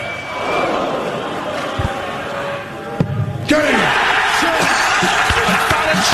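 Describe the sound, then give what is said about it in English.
A large indoor crowd at the World Darts Championship, 17 December 2019, murmurs steadily as a player needs a bullseye, then erupts into a loud, sustained roar of cheering and whooping as Fallon Sherrick beats Ted Evans, carrying on to the end. “Listen to the crowd.”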